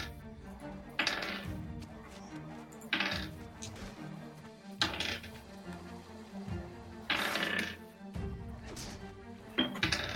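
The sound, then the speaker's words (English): Handfuls of dice clatter and rattle across a tabletop in about five separate rolls, each a bright burst of clicking that trails off, with low voices murmuring in the background. “He's rolling a lot of dice. That's a lot of fucking dice.”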